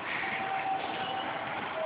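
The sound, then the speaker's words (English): A steady rumble of a train standing or creeping along a station platform, with a thin metallic whine drifting in and out above the noise. No one speaks. “Okay, we just got off the train.”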